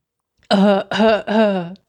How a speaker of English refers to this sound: Let me clear my throat. Let me clear my throat.